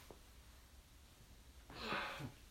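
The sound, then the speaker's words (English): A single breathy yawn near the end, a drawn-out airy exhale with a faint voiced groan at its close, quiet against a hushed background. “I know, I was just yawning because of this podcast.”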